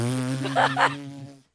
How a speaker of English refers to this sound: And so I was texting my old coworkers. And I was like, I recorded my farts.